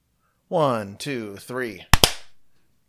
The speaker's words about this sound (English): Let's 1, 2, 3 clap since we reconnected.